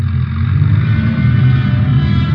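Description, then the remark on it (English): A car engine rumbles loudly, a steady low drone with a slight rise as it pulls away, with no voices. “Ben and I trailed the cab to a bus depot in downtown Los Angeles”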